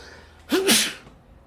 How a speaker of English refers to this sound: I'm going to sneeze.